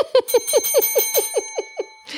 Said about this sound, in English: Nice touch with the bell. You mean Grandma Sue's bell.